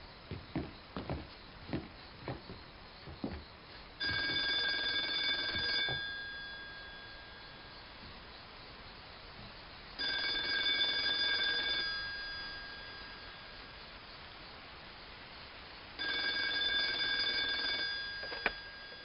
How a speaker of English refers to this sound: I stepped on the porch and the phone rang. The payphone?